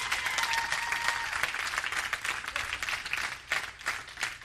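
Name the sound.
audience clapping hands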